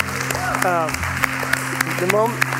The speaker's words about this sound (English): That very moment, and we always clap because somebody just got saved.